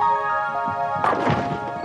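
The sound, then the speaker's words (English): A bowling ball rolls with a steady, humming rumble for about a second, then slams into the pins with a loud crash, followed by a brief clatter of pins tumbling. “You don't have to knock down all the bowling pins with a single roll.”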